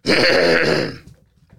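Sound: throat clearing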